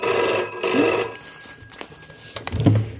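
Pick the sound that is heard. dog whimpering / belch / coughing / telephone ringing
telephone ringing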